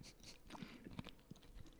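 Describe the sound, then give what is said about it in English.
Crisp crunching as someone chews a banana chip, a quick series of irregular crunches and bites with no talking, fairly quiet overall. “I hear you chewing on a banana chip.”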